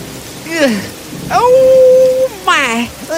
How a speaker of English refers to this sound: And so Giles walked out, battling with the harsh rain and winds.